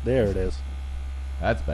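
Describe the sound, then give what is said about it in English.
A vibrating massager hums steadily on a low setting, its first or second setting, a constant buzz running through the whole moment while a person speaks briefly at the start and again near the end. “It's usually just like your first or second massager. Setting.”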